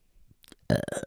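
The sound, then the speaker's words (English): A single loud, forced fake burp erupts after a brief quiet pause with a faint breath, deliberately produced, croaking on for a moment before cutting off. “I can fake burp.”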